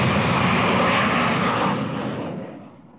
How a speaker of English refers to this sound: and 100 times greater still, 25 metres away from a jet aircraft taking off.